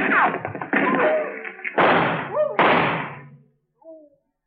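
Two loud, sharp gunshots ring out less than a second apart, each trailing off in a noisy echo. Busy, clattering sounds come before them, and a faint, thin tone follows.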